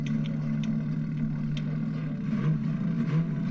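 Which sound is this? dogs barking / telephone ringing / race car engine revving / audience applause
race car engine revving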